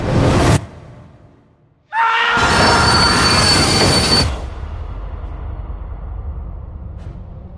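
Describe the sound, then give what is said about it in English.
A train rolls along the rails: a short rush of noise, then a loud grinding roar with high metallic wheel squeal, easing into a steady low rumble. No one speaks. “I see evil on this train.”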